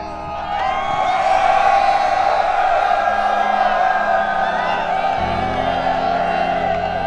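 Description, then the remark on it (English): The collective war cry of an army of men and women fighters echoing up and down a mountainside: a massed crowd of voices roars a sustained, booming war cry, many shouts blending into one loud, continuous bellow that holds steady for several seconds. “The knight Aveline found her answer in the collective booming war cry of the army.”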